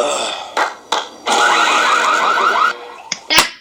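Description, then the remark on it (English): Several alarms blare at once, their warbling electronic tones overlapping in a loud, steady wash for a couple of seconds, framed by short sharp bursts of noise before and after. “It's just all the alarms go off.”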